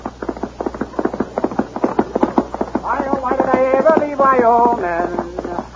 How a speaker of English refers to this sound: From out of the spacious west, blazing a trail swiftly through mountain, plain, and stream, comes the thundering hoofbeats of the great horse, Silverware.